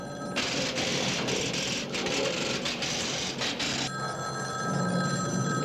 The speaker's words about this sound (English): Yeah, what I've done is I've tapped this phone so that when it rings, it'll ring at the station house, too. Your phone's ringing.